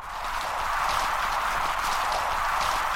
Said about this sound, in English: This is just sound recorded off of a reef about an hour or two after sunset, and the noise is mostly sea urchins and snapping shrimp. A lot of the pops are probably the snapping shrimp, and both of these things tend to come out at night,